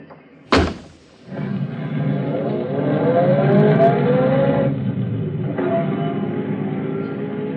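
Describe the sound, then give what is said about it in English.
A door thuds shut, then a car engine starts up and runs steadily, its pitch climbing as it revs and pulls away, with no talking. “But that's my car.”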